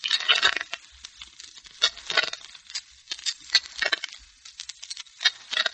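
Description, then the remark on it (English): Playing cards are shuffled in a series of quick, crisp riffling bursts with short pauses between them, several shuffles in a row with no voices. “Sound of shuffling cards can be dangerous music to certain ears, particularly to Mark Easy.”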